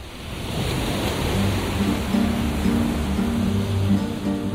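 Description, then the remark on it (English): Steady surf of Adriatic Sea waves washing onto a beach on the coast of Albania, a broad continuous roar with gentle swells, with no voices. “The morning when I came up and just opened the balcony door, and I was like, here is the sea, it's a beach.”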